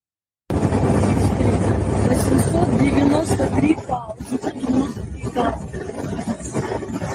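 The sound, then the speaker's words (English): A loud car engine roars aggressively for a few seconds as the car accelerates in a road rage incident, then drops back as a woman talks in the background over the lingering engine noise. “There's the aggressive car.”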